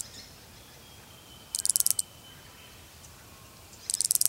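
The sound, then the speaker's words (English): A creaking branch cicada calls in two short bursts of rapid, dry, creaky pulses, high-pitched, separated by a few seconds of quiet background. “Its name is the creaking branch cicada, because that's what it sounds like, a creaky tree branch.”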